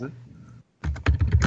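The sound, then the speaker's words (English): Rapid, heavy typing on a computer keyboard during an interview: a dense clatter of loud keystrokes bursts in after a brief quiet gap and keeps pounding unevenly. “always hearing when Kane is on the keyboard during these interviews. He sounds like a gorilla at the keyboard, just randomly smashing”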